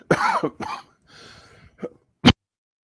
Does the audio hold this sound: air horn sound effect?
no